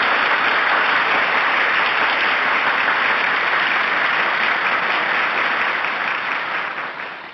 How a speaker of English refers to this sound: Well, I definitely needed to add some applause to that,